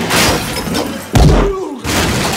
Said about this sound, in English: he picks him up, he puts him through a wall, he hits him with a toilet!